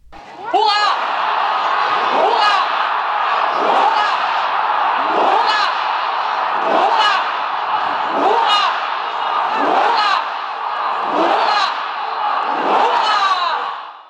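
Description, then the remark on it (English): A large crowd, led by Miss Frederiksen, shouts a ninefold salute for His Majesty King Frederik of Denmark: nine loud, rhythmic cheers about every second and a half, each rising out of a continuous roar of massed voices. “Miss Frederiksen then led the crowd in a ninefold salute for His Majesty the King.”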